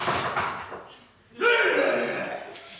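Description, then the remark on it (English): A small door slams or is pounded hard, loud, with a heavy bang at the start and a second, sharper slam midway whose rumbling echo lingers and fades. “This little door will only last so long, my beautiful virgin little meat-suckers.”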